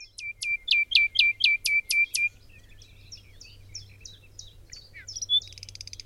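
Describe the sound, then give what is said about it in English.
A bird sings a loud, rapid run of about eight repeated whistled notes, then shifts into softer, varied twittering phrases over a faint low hum. “The other system is what you find in birdsong, what I call the E system or the expressive system.”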